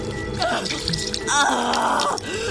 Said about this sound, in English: She pressed it to her face so that the water covered her nose and splashed down her neck.